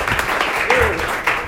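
Steady audience applause as a stand-up comedian is introduced on stage: a dense wash of many hands clapping at constant loudness, with faint cheers and a brief rising whistle-like tone partway through.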